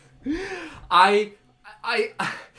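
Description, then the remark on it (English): Heavy, exaggerated panting from a voice: four loud, breathy, voiced huffs in an uneven rhythm, separated by brief pauses. “Heavily panting.”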